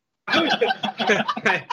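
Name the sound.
coughing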